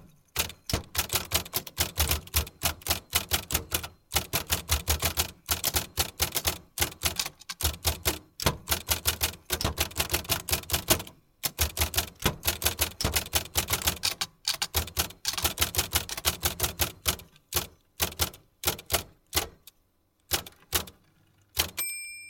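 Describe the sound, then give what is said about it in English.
Rapid, steady typing on an Olympia SM9 manual typewriter, typing out the conclusion of Steinbeck's Of Mice and Men, sharp key strikes clattering in quick bursts with brief pauses, ending with the ding of a carriage bell; clear, no voices. “And who can hold back tears hearing the heartrending conclusion of Steinbeck's Of Mice and Men as told by an Olympia SM9?”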